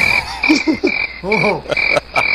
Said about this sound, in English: Drums and crickets, baby.